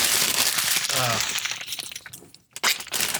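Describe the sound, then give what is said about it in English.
A paper bag holding a 40 of Mickey's malt liquor crinkles loudly in a continuous rustling, crackling stream, with a short voice sound briefly mixed in and a quick pause before the crinkling resumes. “… was going to drink his 40 out of a paper bag, but no, that crinkling is not going to go.”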